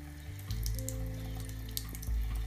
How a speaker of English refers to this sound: So now I'll run it down with a stream of lukewarm water.